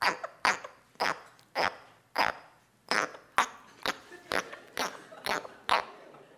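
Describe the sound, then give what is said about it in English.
An Australian tree frog chirps about a dozen times, each call a short, raspy, fairly loud burst, repeating at an uneven quick pace with no voices present. “Is it an Australian tree frog? Sure is, yeah.”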